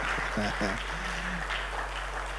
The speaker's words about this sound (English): We celebrate the women, particularly as is the International Women's Day. Can you help me appreciate them? Look at the way you're clapping.